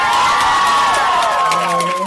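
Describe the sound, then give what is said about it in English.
A comedy club audience at the Comedy Attic in Bloomington cheers and whoops loudly for a comedian's first-ever performance, with scattered applause beneath, a dense and steady wall of excited voices holding for a couple of seconds. “I'm going to pretend that applause is for me.”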